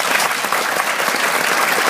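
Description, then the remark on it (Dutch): Dense, sustained applause from a theater audience as the actors run onto the stage after a nearly three-hour performance, a steady, thunderous roar of many hands clapping at once, loud and filling the whole stretch without pause. “Totdat de acteurs het toneel op komen rennen om een daverend applaus in ontvangst te nemen.”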